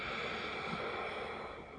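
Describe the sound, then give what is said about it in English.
A long, steady breath pushed out through the nose during a breathing exercise as the arms drift back to the body, a soft breathy hiss that holds for about two seconds and eases off slightly at the end, with no talking. “Let the arms drift back to the body and sniff out the air.”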